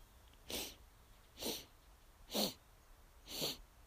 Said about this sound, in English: So the breath pattern is, once I get into a steady rhythm, I begin to inhale in four sniffs as I take four steps.